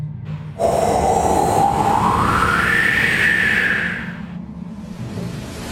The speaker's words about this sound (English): You hear a howl that sounds like...